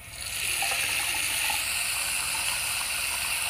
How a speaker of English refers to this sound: I got water running. Like. Shower. I had like a spigot running or water running from a spigot. Let's see. I don't know how specific we need to get. I was right. What? A tap running. Okay. It's still water running, so.